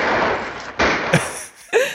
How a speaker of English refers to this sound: So this happens like during the shootout when Stumpy has come. And I forget exactly what John Wayne tells him, but here, let's just listen to it.